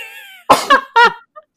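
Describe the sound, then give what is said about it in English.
A loud sneeze bursts out in a couple of sharp, breathy blasts, followed by a faint short sound as it trails off. “Bless you.”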